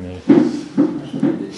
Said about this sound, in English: Someone just got the door. Never mind.